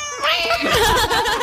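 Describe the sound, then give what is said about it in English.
A family pet cat growls and yowls, a loud, drawn-out moaning cry with a wavering, sliding pitch that lasts over a second, with no other sounds around it. “But I was shocked the first time he started growling.”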